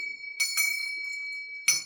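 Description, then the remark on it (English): A bright bell rings with a steady, sustained tone, struck about three times: two quick hits close together, then one more after a pause. The ringing is clear, with no talking. “You forgot to ring the bell.”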